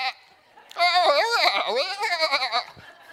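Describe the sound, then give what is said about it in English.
A person imitates a sheep with a long, wavering "baa" bleat, loud, quavering for about two seconds before trailing off, with a faint voice just before it. “No, we're just sheep.”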